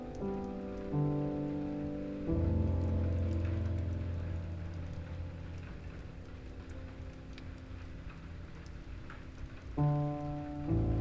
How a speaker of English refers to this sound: And instead, let the gentle rain wash them away.